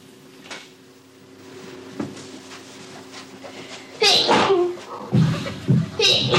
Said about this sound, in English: She's been sneezing all day, every day, since January the 13th. In July, after 194 days, she broke the world record. I like the noise of the sneeze quite a lot.